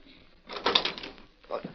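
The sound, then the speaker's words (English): A door is opened: a brief rattling clunk of the latch and swing, followed a moment later by a second, softer knock of wood. “Who is it? Please open the door. I want to speak to you.”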